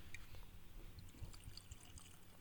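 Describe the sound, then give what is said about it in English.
Bourbon from Tennessee pours steadily into a glass, a continuous gurgling trickle with small splashes lasting a couple of seconds, no talking over it. “Let's try to get a pour. Let's get a pour here.”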